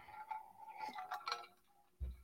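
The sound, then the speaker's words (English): Glasses clink together in a toast to the fans, a few bright taps with a faint lingering ring, followed by a dull low thump near the end. “Should I do another cheers? Yeah. To fans first? Yeah, why not? We'll cheers to fans first, Sports Network.”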